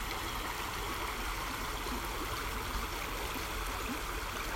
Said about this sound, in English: So we'll be quiet and just listen to the stream, or do whatever you want to do for about 5 minutes, and then I'll talk us out using our breath. And I hope that the sound of the moving water is as restful to you as it is to me.